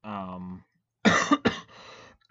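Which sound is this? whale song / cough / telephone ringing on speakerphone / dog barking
cough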